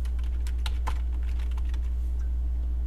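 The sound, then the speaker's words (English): Clacking of a computer keyboard, a few sharp keystrokes scattered irregularly, some louder than others, over a steady low electrical hum with no one talking. “My keyboard's not...”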